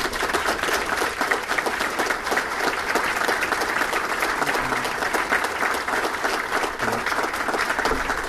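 A crowd applauds steadily for about eight seconds, a dense, even wash of many hands clapping at constant loudness with no voices standing out.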